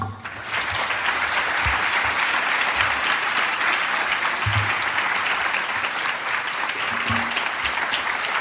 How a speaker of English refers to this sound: Seth Dillon, everyone. Okay, I know you guys could stand and applaud for a long time after that performance.